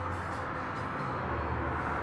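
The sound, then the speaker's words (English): Heavy trucks rumble past in a steady, continuous roar of low engine and road noise, with no distinct pass-by peak and no voices. “Hear the trucks go by.”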